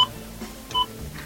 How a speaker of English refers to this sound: Yeah, actually. Can you hear the beep?